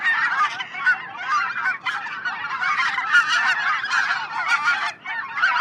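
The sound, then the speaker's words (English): A recording of a flock of white-fronted geese, played back through a phone, calling continuously, many overlapping high, yelping honks layered into a dense, steady chorus, with no talking. “Classic flock of white fronts.”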